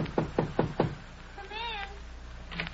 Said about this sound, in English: Knock on that door, will you? Okay.